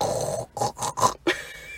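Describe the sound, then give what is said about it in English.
A person imitates a pig as an impression of the character Robert Baratheon of House Baratheon, making a quick run of four or five rough, snorting grunts in a choppy rhythm, fairly loud with no talking. “I did not know that was a pig noise.”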